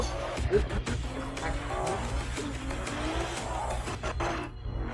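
A car engine rumbles steadily with bursts of tire squeal and skidding over a dense, busy mix from a Honda car commercial for the HDX, ending with a sudden drop-out of the high end.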